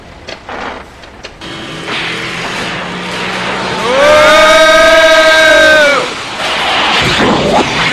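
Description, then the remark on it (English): A van engine strains as it slowly accelerates toward 53 miles per hour, its droning whine climbing in pitch and swelling loud for a couple of seconds before easing off, over steady road rumble. “It's really taking a while for this van to pick up 53 miles. It's putting like crazy.”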